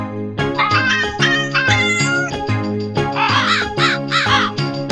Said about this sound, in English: Question 2 is false instruments, so please tell me the song title and original artist after hearing this brief intro, which has had its instrumentation changed to the classic combo of island percussion, cat and crow.